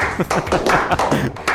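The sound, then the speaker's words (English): A run of slow hand claps, sharp, at a steady, unhurried pace with slightly uneven timing, by two people clapping in a studio in appreciation of city workers in London. “Give you a nice little slow clap.”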